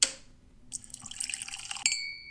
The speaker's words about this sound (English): I'm thirsty. Let me take a sip of alcohol. I'm sure that'll help.